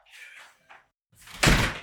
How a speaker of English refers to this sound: I'll be out. I'll just close the door on my way out.